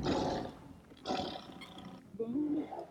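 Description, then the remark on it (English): A tiger in a Texas neighborhood roars loudly, two rough, rumbling bursts about a second apart, followed by a brief voice-like sound at the end. “Because there is a fucking tiger.”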